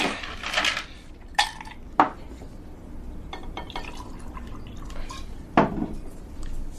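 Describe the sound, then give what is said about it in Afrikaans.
Brandy poured into a glass in a bar: a soft, steady trickle of liquid punctuated by a few sharp glassy clinks. No one speaks. “Skink al vir ons Engelsman. Brandewyn, in brandewyn veritas.”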